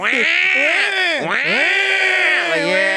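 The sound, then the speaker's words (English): A loud, continuous baby-like wailing cry, its pitch swooping up and down in strained, whiny glides for about three seconds, with no other sound around it. “You pull up next to a nigga in a Ferrari, the baby's like, wah.”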